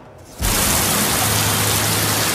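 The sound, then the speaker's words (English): Heavy rain in San Francisco cuts in abruptly after a brief quiet moment, a dense, steady roar of downpour causing extreme flooding that stays loud and constant, with no voices. “Heavy rain in San Francisco has caused extreme flooding.”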